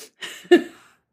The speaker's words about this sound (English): No. Every time I say something, you cough over me.